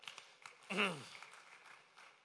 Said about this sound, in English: I think we should clap for ourselves.